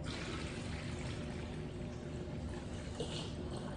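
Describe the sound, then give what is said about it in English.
Five cups of water pour steadily into a container while making lemonade, a continuous splashing rush that fills the whole few seconds without a break, no voices over it. “And then we have 5 cups of water.”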